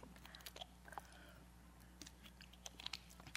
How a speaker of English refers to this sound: Excuse me, I need a little water.